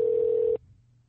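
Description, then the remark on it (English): A single steady electronic phone tone, like a ringback beep on an outgoing call to another person's phone, sounds clearly for about half a second and then cuts off to quiet background hum. “I'll call you on your phone.”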